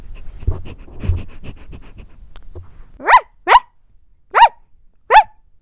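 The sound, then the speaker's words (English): A small toy dog named Chocolate barks four times into the microphone, sharp high-pitched yaps spaced about half a second to a second apart, after a few seconds of low snuffling and rustling as he sniffs the microphone. “That's how he barks, sorry about that.”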